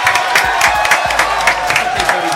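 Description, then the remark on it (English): An audience claps and cheers loudly and steadily to welcome guests, a dense wash of many hands applauding with whoops and shouts rising through it. “Let's clap it up one time.”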